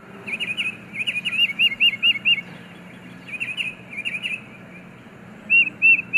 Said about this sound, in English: The tufted titmouse, for example, is a songbird whose anti-raptor warning cries send squirrels and chipmunks running.